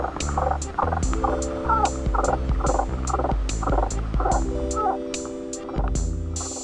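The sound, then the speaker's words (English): A mountain yellow-legged frog's clicking call, made without a vocal sac: sharp, dry clicks repeating in a quick, steady rhythm, a dozen or so in a row, over a steady low, humming tonal background. “Instead, it makes a sort of clicking sound.”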